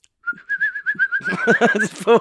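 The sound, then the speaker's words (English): A bird outside an open door gives a steady, warbling call that holds one high pitch for more than a second, with slight trills. Partway through, voices and laughter rise beneath it and take over. “Or a bit of a birdie wordy.”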